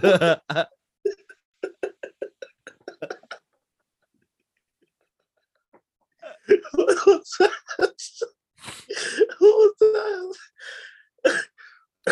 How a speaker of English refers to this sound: I sneezed and then hella snot came out and I had to spit it out.